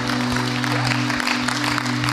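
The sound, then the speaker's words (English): A church audience claps steadily for a group of people who have just been prayed over. Many overlapping hand claps form a dense wash at an even, fairly loud level, with a low electrical hum running underneath throughout. “How about we give these awesome people an actual clap?”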